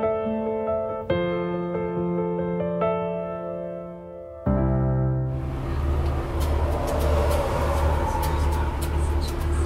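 Steady humming tones give way to a loud vehicle rumble, then a broad rush of wind and road noise inside the lounge of a moving tour bus with its windows open and a southern breeze blowing through. No one speaks.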